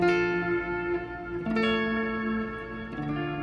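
A clean electric guitar tone through a normal amp with the pedal bypassed rings out with three sustained chords, each held about a second and a half, with a soft wash of reverb and delay, which stay on, trailing behind. No one speaks.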